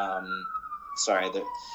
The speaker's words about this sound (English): I live in New York City. There are sirens everywhere. I'm going to wait a sec. Oh, almost gone.